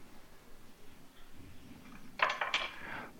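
Diced onion drops into a frying pan with eggs, with two quick, bright clattering hits, followed by a short rattling ring that fades out. No one speaks.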